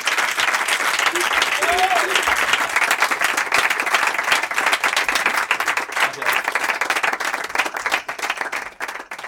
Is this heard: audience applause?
yes